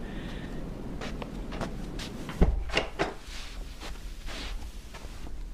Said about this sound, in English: Come in and close the door.